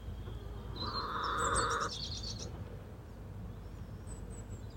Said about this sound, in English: One of the hens, …, is belting out one of her classics, as you may hear in the background.